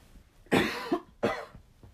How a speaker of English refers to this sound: Coughs are going to be fun on this.